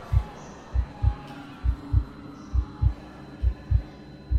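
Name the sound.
pounding heartbeat sound effect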